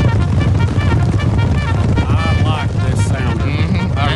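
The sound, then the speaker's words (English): A buffalo stampede sound effect played for the Rick and Bubba Buffalo Wild Wings charity charge: a loud, continuous low rumble of pounding hooves, with bellowing or grunting calls rising over the thunder toward the end. “Release the buffalo.”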